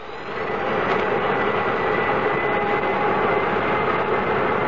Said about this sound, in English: This is K-Flight 113 Transways, port K2 to ground control. Request permission to start engines. You have permission, Captain.